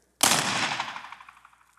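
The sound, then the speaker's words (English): A confetti cannon goes off at a celebration of the start of 2021 with one sudden, loud bang, followed by a fizzing, crackly rattle that fades away over about a second and a half. No one speaks. “We got a confetti cannon.”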